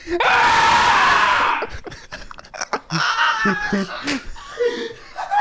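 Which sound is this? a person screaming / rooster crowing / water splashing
a person screaming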